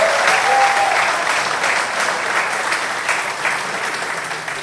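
audience applauding

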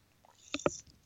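sipping beer

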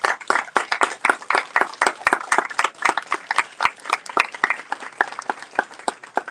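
audience round of applause

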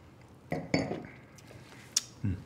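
glasses clinking

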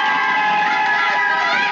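audience cheering and applauding

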